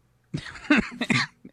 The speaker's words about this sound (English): You coughed. I don't know if you're serious there. No, that was a real cough, but a not serious cough.